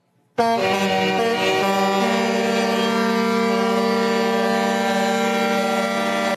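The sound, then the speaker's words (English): Loud air horns of truckers protesting mandates in Canada blare in a continuous, overlapping chorus, a sustained brassy tone with strong harmonics that holds steady for several seconds without pause. “There's a new sound of freedom, and it sounds not like an airplane, but like this.”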